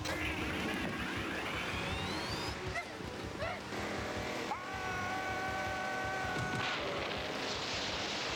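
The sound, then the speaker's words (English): A car engine revs hard and climbs in pitch, then settles into a steady, high whine as the car takes off and flies, with loud rushing noise throughout. “What? It's flying?”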